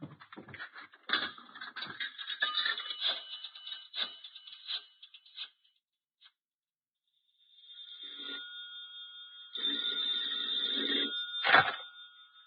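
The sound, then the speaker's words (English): An old-fashioned telephone bell rings in loud, jangling bursts, then gives way to a sustained ringing tone after a short pause. There is no talking. “Oh, excuse me, here's a phone.”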